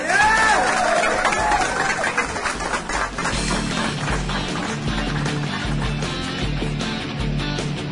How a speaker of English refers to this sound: So, yeah, give him a round of applause.